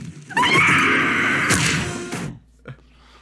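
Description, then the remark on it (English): A loud, harsh, strange yell from the Goblin in a Spider-Man film scene at a burning building rings out for about two seconds, rough and strained, then cuts off and is followed by a single short thud. “Get that weird ass yell.”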